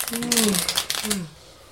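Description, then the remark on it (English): A quick, dense rattle of playing cards being shuffled, lasting about a second before fading, with a voice murmuring underneath. “Uh-oh, the cards are coming out. I shuffled those, too. Okay. I reshuffled them.”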